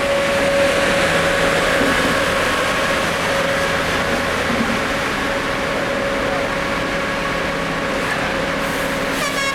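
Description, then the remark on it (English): A steady, loud mechanical drone of small diesel rail cranes designed to lift railroad ties, pulling small flatbed cars loaded with track debris up from a tunnel, with a sustained tonal hum and grinding, clattering undertones, continuous throughout with no speech. “I stood enthralled as small diesel I guess they're cranes designed to lift railroad ties, and they pulled small flatbed cars loaded with track debris up from the tunnel.”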